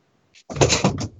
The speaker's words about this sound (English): I was moving my chair closer. Oh, it sounded like you were about to flip a table.